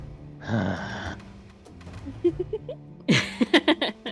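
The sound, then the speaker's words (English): A voice acts out a role-play character's loud, breathy gasp lasting about half a second, followed by a few soft clicks and then a run of sharp, choppy bursts like stifled laughter. “Garrus just lets out an audible gasp, like...”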